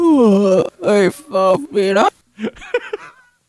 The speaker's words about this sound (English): I'm tired. You got a yawn going on there?